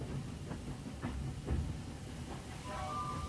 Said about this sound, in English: So as the train departs, everyone is already busy writing a letter, hoping for it to be transmitted. The train goes north.